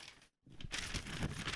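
Rustling and crinkling of paper notes being shuffled, a brief rustle, a short pause, then a steadier stretch of crackly handling with no one talking.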